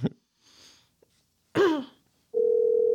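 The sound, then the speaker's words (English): A loud, steady electronic phone ringing tone on an outgoing call begins near the end and holds unbroken, following a short breathy burst, like a sneeze or cough, and a few faint rustles. “It's ringing, dude.”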